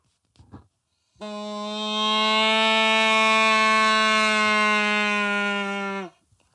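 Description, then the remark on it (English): A factory-made cow call is blown in one long, loud, buzzy tone that holds steady for about five seconds and then cuts off sharply, with a brief soft bump just before it. “Here's a factory-produced cow call.”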